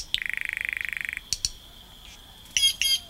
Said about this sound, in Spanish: Una chara verde, la foto misma de un ave tropical, vestida con su plumaje verde, amarillo y azul, ofrece sus voces variadas.